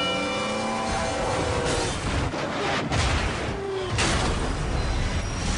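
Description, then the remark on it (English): A million-pound freight train that takes a mile to stop crashes at a crossing: a deep, loud rumbling roar with a horn-like tone early on, then heavy booming impacts and grinding metal. “on the tracks, we have Bull, a million-pound freight train that takes a mile to stop”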